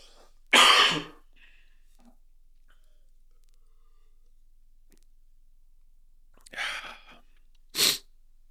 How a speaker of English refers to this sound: Pause. Cough break.